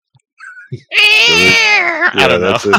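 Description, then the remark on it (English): A person's voice imitates the roar of Anguirus, the kaiju from the Godzilla movies: a loud, high-pitched, strained wail held for about a second, then two shorter, rougher bursts. “anyone try to mimic Anguirus's roar?”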